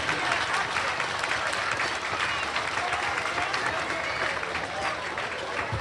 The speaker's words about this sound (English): First, it is a privilege to be standing here with members of the community of safety and first responders. Yes, they do deserve a round of applause. They represent a lot of amazing people.